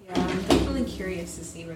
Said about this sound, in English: Sorry I slammed my door.